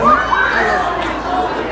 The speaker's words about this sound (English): Oh, they're shouting. A child has fallen over. Oh, they're pranking a child.